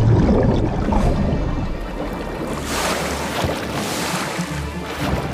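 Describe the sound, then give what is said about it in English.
A dense, rushing underwater churn of bubbles, a pod of whales working together to blow a steady curtain of them to disorientate a seal on an ice platform. The roar is loud and continuous, with a brighter, fizzier surge partway through. No voices are heard. “Blowing bubbles.”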